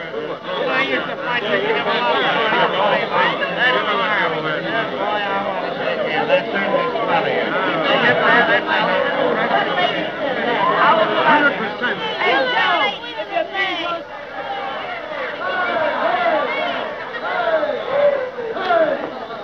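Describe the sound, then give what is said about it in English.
Steady, loud crowd chatter from a banquet: many overlapping voices blend into a continuous babble with no clear words, holding a fairly even level with a brief dip partway through. “Don't you know how to act at a banquet? What do you think you are, a lot of gas honk yaps? Well, cut that chatter.”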